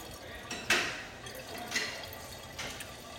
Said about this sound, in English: It's definitely not a quick process to pour this. This is riveting content.